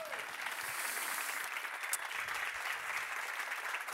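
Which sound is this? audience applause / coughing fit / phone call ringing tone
audience applause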